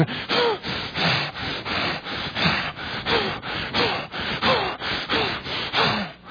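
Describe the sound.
A voice imitates the fierce, laboring snorts of a horse working hard in a war or a race: about ten harsh, breathy bursts in a steady, driving rhythm, loud and rasping, with no talk over them.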